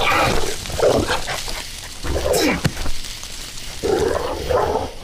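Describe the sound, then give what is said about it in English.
A large dog barks and growls in a few loud, rough bursts over a steady background of rushing noise. “Over here, you big dumb dog!”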